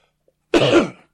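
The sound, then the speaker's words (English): A single loud cough bursts out after a brief silence, lasting about half a second with a rough, throaty quality before trailing off. “Again, no cough button.”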